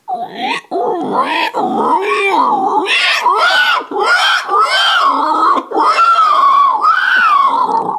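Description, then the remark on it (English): A person vocally imitates a dying pig with continuous, strained squeals and wailing shrieks that rise and fall in pitch, loud, broken only by brief gasping pauses over eight seconds. “How about a dying pig?”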